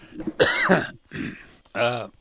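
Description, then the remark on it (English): A person coughs a few times, short rough bursts with brief pauses between them, followed by a voiced throaty sound, with no other noise around. “Hang on, I got a cough again.”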